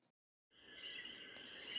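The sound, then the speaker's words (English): After a brief silence, a dense, steady night chorus of crickets and coqui tree frogs swells in outside a window in Puerto Rico, a shrill continuous trilling that fills the background with no voices. “You will be hearing the real sounds outside of her window in Puerto Rico, the beautiful sounds of coqui and grillo. The coqui, the tree frog, and the grillo, the crickets.”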